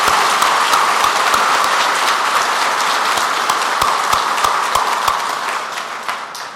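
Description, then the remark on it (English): A crowd applauds IMSA racing teams and drivers, a dense, bright wash of many hands clapping at once, holding loud for several seconds before gradually thinning and fading toward the end. “How about a round of applause for those teams and drivers that did so well for us this year?”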